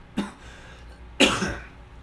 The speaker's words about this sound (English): Good thing there's only 3 minutes left. I'm starting to cough again.